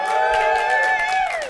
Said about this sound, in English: And if you're cheering for the University of Kansas tomorrow night, make a little noise.